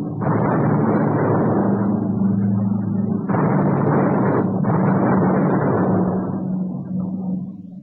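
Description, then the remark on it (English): Distant depth charge explosions, dropped by a plane about 2 miles away, rumble as a steady low roar, with two sudden surges of booming noise midway through before it slowly fades; no voices. “He's dropping depth charges way over there.”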